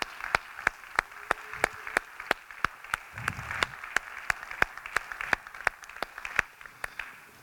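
An audience applauds steadily, a dense wash of clapping with a few sharp, evenly spaced claps standing out on top, lasting several seconds with no voices.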